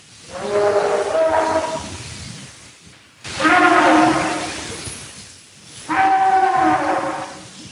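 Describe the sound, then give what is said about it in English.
Three huge, booming trumpeting calls, each lasting about two seconds with short pauses between, loud and brassy with a rich, layered tone that swells and fades. No one speaks. “I mean, human vocal cords can't make a huge booming trumpeting sound like that.”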